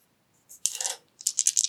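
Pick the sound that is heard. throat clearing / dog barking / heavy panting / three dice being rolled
three dice being rolled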